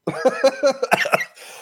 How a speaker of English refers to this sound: I've been coughing a lot this whole episode.